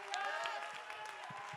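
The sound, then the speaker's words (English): An audience claps their hands in praise to God in a steady, dense wash of applause, with voices and crowd noise mixed in underneath throughout. “Go ahead and clap your hands.”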